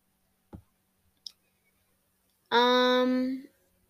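Two quick, sharp mouse clicks about a second apart as someone selects answers in a personality quiz, followed by a brief sustained voiced tone lasting roughly a second, like someone humming.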